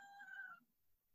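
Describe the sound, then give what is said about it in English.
A single short, clear domestic cat meow, rising and fading within about half a second, followed by near silence and a faint brief knock at the end. “My cat came to visit me.”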